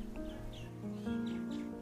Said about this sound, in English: It's not just a cup of coffee, but it is my excuse to start my day slowly, to prep myself for the day, to hear the morning birds, and to be present in the moment.